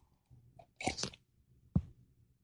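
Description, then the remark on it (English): A brief slurping sip from a cup, followed moments later by a single sharp clunk as it is set down, with no talking. “I got my cup here. I'm going to take a sip.”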